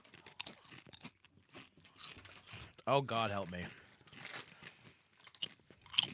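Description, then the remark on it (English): Loud crunching and chewing of crispy fried chips made from premium cuts of chicken and tapioca flour, eaten from a bag, with repeated sharp bites throughout, while a person murmurs and speaks briefly over the munching. “Fried chips made from premium cuts of chicken and tapioca flour.”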